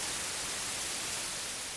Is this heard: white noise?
yes